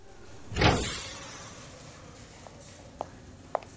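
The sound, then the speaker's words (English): A broad whooshing slide of double doors opening onto a shuttle arrival bay, loud at first and trailing off over about a second, followed by a few faint, sharp clicks or footsteps. “It's right through those double doors.”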